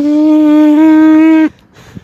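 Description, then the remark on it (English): A steady, loud, hollow droning tone with rich overtones holds for about a second and a half, a low moo-like sound made by someone blowing into styrofoam, then cuts off abruptly into quiet. “What is stop blowing in styrofoam? Me playing an instrument, low-key.”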